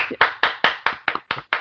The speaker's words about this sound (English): I don't know, can we applaud? Can you?